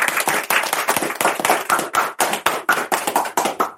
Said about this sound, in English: Welcome, everybody, to the Sascapes podcast. Let's give yourselves a round of applause.